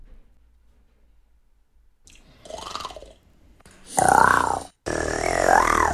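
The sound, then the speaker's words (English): A young man's voice growls in a few rough, throaty bursts for a TikTok, answering a Snapchat request to show his best growl, starting with a short quieter one and building to two loud, sustained growls, with silence before them. “I guess she sent a Snapchat to a bunch of boys. And was like, show me your best growl.”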